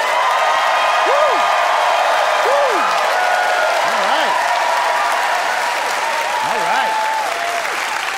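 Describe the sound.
Sustained applause from a large audience voting by applause for a debater arguing against standardized tests, steady and loud throughout, with a few scattered whoops and cheering voices rising above the clapping.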